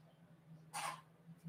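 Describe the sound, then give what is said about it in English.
A dog makes one short, raspy choking hack, a quick burst over a low, steady background hum with no talking. “Excuse me, dog choke, excuse me.”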